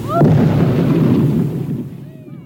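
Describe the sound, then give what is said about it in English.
A sudden, powerful explosion of a beached whale carcass in Oregon in 1970: a heavy boom that rolls into a deep rumble for a couple of seconds before fading, with faint cries as it dies away. “But the explosion, it didn't end well.”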